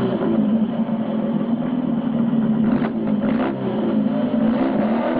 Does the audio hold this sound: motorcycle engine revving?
yes